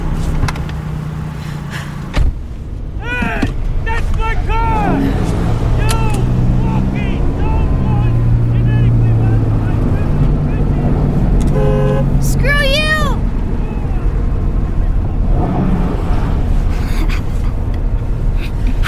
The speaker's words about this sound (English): Well, one of them involves stealing trucks like this and driving them.